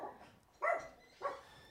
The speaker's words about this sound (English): There's a dog in here, by the way. Take her out with you.